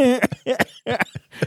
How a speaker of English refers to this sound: Pardon me, I'm coughing right in the mic.